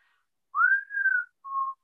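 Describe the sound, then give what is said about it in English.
A person whistles a short tune: a rising note that holds and slides down, then a brief pause and a steadier final note. Clear, with no talking. “So we hear the whistle. Wait, dang, you know how to do it?”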